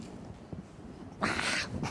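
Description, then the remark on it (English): A person mimics an irritated cat being petted from the tail up, giving a short, loud hissing yowl after a quiet moment, followed by a brief second burst at the end. “If you pet a cat from the tail on up, what does the cat do?”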